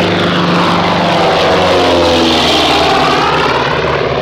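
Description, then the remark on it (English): A loud, steady airplane engine roars throughout as a plane to Lisbon takes off, its propeller drone rising in pitch as the plane picks up speed, with no voices present. “Plane to Lisbon.”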